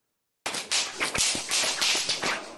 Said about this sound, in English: If something goes wrong, you just walk around the house whipping the walls with this thing. No one is going to mess around.